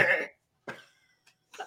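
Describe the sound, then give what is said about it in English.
A person makes short, raspy goat-like bleating noises, two main bursts with a wavering, nasal tone, separated by brief silences and followed by a faint trailing sound. “We've spiraled. I'm a literal goat.”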